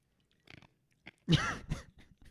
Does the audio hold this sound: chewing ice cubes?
yes